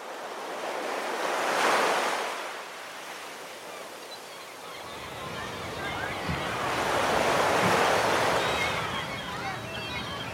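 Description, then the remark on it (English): Ocean surf rolls in with two broad swells of crashing, hissing wash, rising around two seconds and again near eight, with steady rumbling noise between the breakers. “When you picture the ocean, what do you see?”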